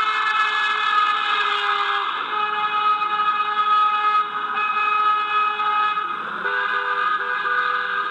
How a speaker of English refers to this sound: As the town fire chief, Clementi had lots of friends, and suddenly Rick and Cindy say it seemed like every single one of them was driving by honking the horn, and it wasn't to say hello.